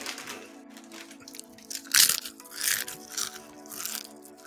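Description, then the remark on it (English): Crunchy chewing, loud and crackly, with several sharp crunch bursts over about four seconds against a steady low hum. No one speaks. “Can you chew louder?”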